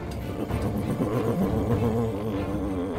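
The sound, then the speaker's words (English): A massage chair running its massage setting, giving off a steady low motorized buzz with a slightly wavering, rumbling pitch that holds at an even level throughout, with no voices. “Kip, why didn't you lead with the massage setting?”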